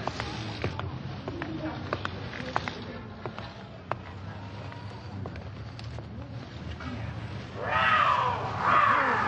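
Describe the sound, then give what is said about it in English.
A cougar snarls twice near the end, two loud, harsh bursts rising out of a steady rumbling, windy background with faint muffled clatter. “No cougar will attack a full-grown man except by mistake.”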